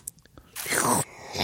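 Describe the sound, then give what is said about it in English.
A wet slurping sip of a drink lasting about half a second, preceded by a few faint clicks and followed by a softer airy breath, with no talking. “Let's take sips of our respective drinks.”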